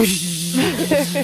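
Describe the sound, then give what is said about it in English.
A steady, loud hiss of spraying water with a constant low motor hum underneath, as a pressure washer runs continuously to wash down a house from the front lawn while a voice speaks briefly over it. “Because I was picturing someone out on the front lawn gurneying down the house.”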